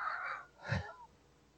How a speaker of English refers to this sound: Apparently my sneeze was really funny this time. It was just directly into the mic. And I saw the waveform for it.